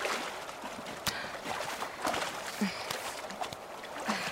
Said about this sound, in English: I'm gonna clean off in the river.